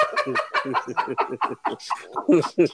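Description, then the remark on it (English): A rapid string of fowl-like clucking and gobbling calls from a bird, about a dozen short bursts in quick, uneven succession, fairly loud. “No, that bird was probably fucking with that turtle because he know that turtle's slow.”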